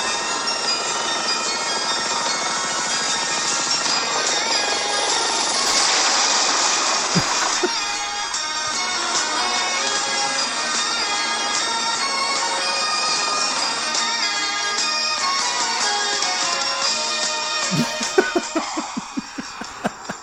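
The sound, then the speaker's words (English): The intro theme of the TV series Blue Thunder plays, a bright, dense synth-pop arrangement with sustained chords held at a steady loudness, then a run of sharp percussive hits near the end. “And this is the series intro.”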